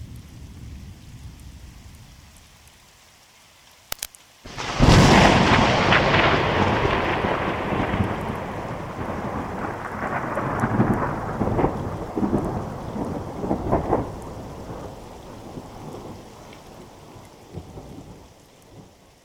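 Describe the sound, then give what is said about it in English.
Under a darkening sky, a sharp crack of thunder breaks out, then rolls into a long, loud rumble that slowly fades over steady rain, with a few more booms swelling toward the end. No one speaks. “The sky is getting really dark, and I'm starting to hear thunder.”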